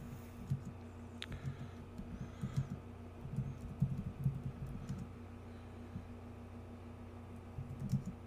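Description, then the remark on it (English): Steady typing on a computer keyboard, a fairly quiet run of irregular key clicks over a low constant hum, with no voices. “Well, I'm typing this.”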